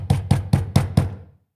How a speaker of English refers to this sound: A slow and heavy step, which had been heard upon the stairs and in the passage, paused immediately outside the door. Then there was a loud and authoritative tap.